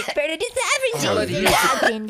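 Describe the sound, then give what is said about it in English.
A person clears their throat with a raspy, voiced rumble, then lets out a short, sharp cough about halfway through, followed by more throaty grumbling. “I'm a tickle in my throat. Don't cough in the microphone.”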